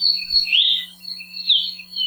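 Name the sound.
bird song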